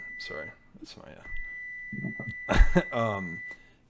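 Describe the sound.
A high, steady electronic oven timer tone sounds in the background, briefly at first and then holding for a couple of seconds, while people talk over it.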